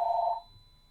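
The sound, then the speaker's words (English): A single short electronic telephone ring, a bright buzzy tone lasting under half a second before cutting off, with no voices and only faint background hum afterward. “Oh, answer the phone.”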